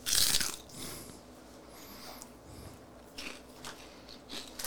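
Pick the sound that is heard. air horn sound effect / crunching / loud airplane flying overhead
crunching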